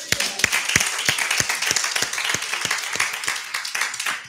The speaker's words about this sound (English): To God be the glory. Come on, clap your hands.